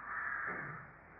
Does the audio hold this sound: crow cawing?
yes